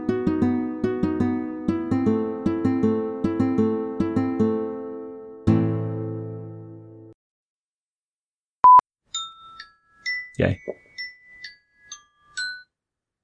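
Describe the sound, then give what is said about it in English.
A phone alarm rings out a bright, repeating electronic melody of chiming tones for several seconds, then stops; a single sharp beep and a brief exclamation from a voice follow. “No, that was my alarm.”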